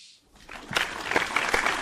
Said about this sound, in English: Good evening. Thank you very much. Very reserved and elegant clapping.